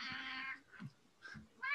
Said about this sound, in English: Okay, tell your cat to shut up.